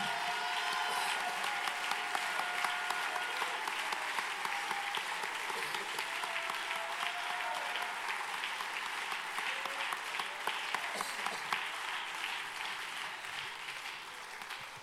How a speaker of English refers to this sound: If God's been faithful to you, why don't you clap your hands and let him know how grateful you are?